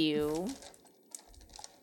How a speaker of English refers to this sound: Hold on, I guess I've got to figure out how many dice this is. Yeah, it's a lot of dice. I need a hold on. I gotta gather all my d8s up now.